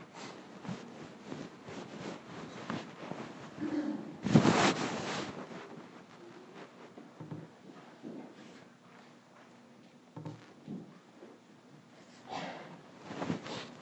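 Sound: sniffling nose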